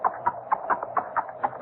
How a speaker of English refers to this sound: That horse is no recording. It's either a mounted policeman or...